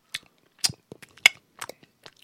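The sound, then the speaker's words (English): A voice imitates a Lyft rider who snapped her gum at every bite while chewing, with a string of sharp, wet clicks and smacks spaced irregularly over a couple of seconds. No one speaks. “do you ever meet anybody that snaps their gum at every bite? Like, they just keep snapping it?”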